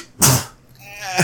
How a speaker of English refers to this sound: Oh, I gotta sneeze and it's gonna hurt. I don't want to do it.